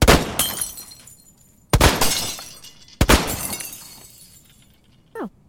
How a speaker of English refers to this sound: The glass shatters, though. The first bullet, you see the hole punch through the glass and the spider cracks come out, and the second one, it shatters, and all three rounds hit the wall in between.